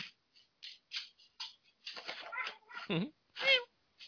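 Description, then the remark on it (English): A cat meows several times in irregular bursts, a few short chirps followed by longer, louder drawn-out meows near the end, with quiet gaps between calls. “And my cat.”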